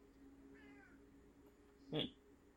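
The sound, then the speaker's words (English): A female cat meows: a faint, thin mew early on, then one short, loud meow near the end, over a low steady background hum. “She's meow angry.”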